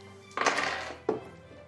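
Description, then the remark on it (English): Three dice, rolled for a perception check in a tabletop game, clatter across a hard surface in a bright, rattling burst lasting about half a second, followed by one sharper knock as a die settles. No one speaks. “I've taken 3 dice.”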